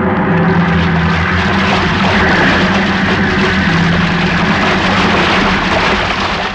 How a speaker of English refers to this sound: Wait, look at the size of that wave. Huh? The great Jehoshaphat. We're going to take it on the port bow. Hang on!